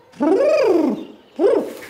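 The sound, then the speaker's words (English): Two low, throaty coos from Reggie, a pigeon, each rising and falling in pitch. The first is long and drawn out, and a shorter one follows after a brief pause. Both are fairly loud, with no talking. “I had no idea Reggie was such a popular pigeon.”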